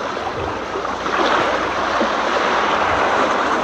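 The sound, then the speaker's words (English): Continuous rushing wash of waves breaking onto an artificial beach at Wave City, fairly loud, swelling slightly after the first second and staying steady, with no voices. “We're kind of sitting on like a beach area, by the way. Kind of. And this is Wave City.”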